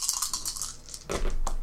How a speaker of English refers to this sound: I'm going to roll my good dice because I don't trust these small dice.